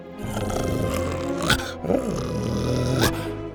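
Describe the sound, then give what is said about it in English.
A deep, continuous animal growl rumbles loud for several seconds, swelling into harsher snarling bursts a few times, with no voices present; Buck growling and pulling harder against his leash. “Buck growled and pulled harder against the leash.”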